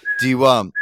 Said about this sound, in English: No, he whistles. Do you whistle? No.